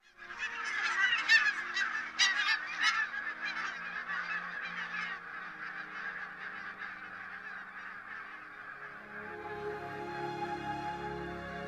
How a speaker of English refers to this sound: Some of the sounds we are hearing less and less of are those of the lapwing, and redshank